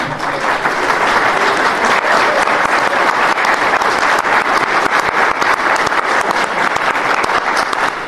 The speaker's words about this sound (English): So if you support us on Patreon, stand on up so that everyone else can applaud and admire you.